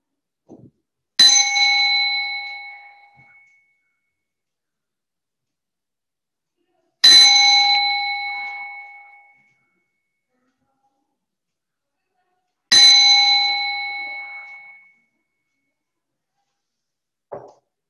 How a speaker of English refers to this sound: So I will ring the bell thrice. The intent is to follow the sound of the bell till it fades out. You may want to turn down the volume of your laptop because sometimes it can be a strong sound.